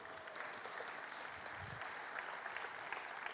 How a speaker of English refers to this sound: Let's give him a clap.